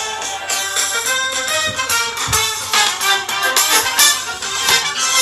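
A 30-second iTunes song preview plays back from a phone, steadily, loud and busy with punchy drum hits and dense, bright instrumentation throughout, no voices talking over it.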